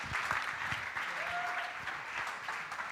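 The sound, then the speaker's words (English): Steady applause from an audience as two people come up to speak, a dense wash of many hands clapping at an even level throughout, with a brief faint tone sounding under it midway. “So can you give them an applause as they come?”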